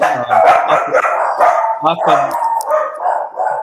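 A dog barks and yelps repeatedly, loud, with quick high-pitched bursts following one another without a break for several seconds.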